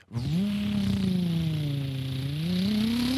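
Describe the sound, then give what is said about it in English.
High-pitched V10 race car engines at the St. Petersburg Grand Prix, about 3 miles away, drone steadily for about three seconds, pitch sagging slightly and then climbing again as they rev, with no voices over them. “And all the background, the V10s, yep. Revving.”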